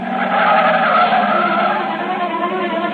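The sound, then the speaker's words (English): A car's tires squeal loudly and continuously as it peels away, the high screech sustained for a few seconds with engine noise underneath, with no one speaking. “You keep saying things you shouldn't, and she lashes out with an answer, and before you know it, you've stormed out of the house, and you're taking it out in the car.”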